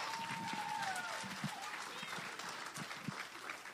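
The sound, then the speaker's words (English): A church audience breaks into loud, dense hand clapping for the Lord that holds steady for several seconds, a crowd's many overlapping claps with a few voices whooping and calling out over the top. “All right, give the Lord a hand clap.”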